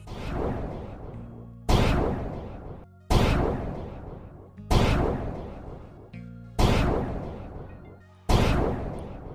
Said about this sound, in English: Now, those fireworks were for all our day ones, everyone who's part of our journey in 2021.